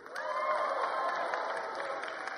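An audience, asked to practice "exaltation" on a count of three, bursts into sustained clapping mixed with cheering and "woohoo" whoops, a dense, steady wash of applause and raised voices that holds at a fairly even loudness throughout.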